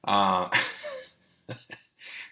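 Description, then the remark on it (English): A deep, rumbling burp after sipping beer, lasting about half a second, followed by a few short breathy, throaty bursts and a soft hiss with gaps of quiet in between. “Sorry about the burps, but it is a beer podcast, so I'm glad you guys are enjoying it.”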